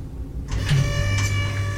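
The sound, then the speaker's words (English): An electronic keycard door lock disengages after a card is pressed up to the door: a steady whirring motor tone with a faint high whine starts partway through, broken by two soft mechanical clicks, over a low background hum. “I just pressed the card up to the door.”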